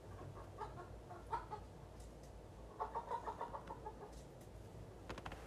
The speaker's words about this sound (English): Bad chickens, man. Bad chickens. Out of there. What are you guys doing? What are you doing? Go get out of my... get out of there. Get out of there.